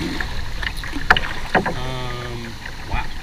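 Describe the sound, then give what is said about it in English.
Kayak paddle strokes dip and splash through water in a few sharp bursts over a steady wind-like rush, with a brief humming tone rising in the middle. “I just started. 50 seconds in to putting on the water.”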